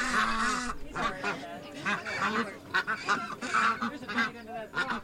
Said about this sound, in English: Then, like a choir heavy with altos, the Canada geese gathered force and trumpeted their refrain, "Honk! Honk!"